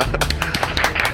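A short burst of applause from a small group, with quick irregular claps overlapping into a dense, steady patter.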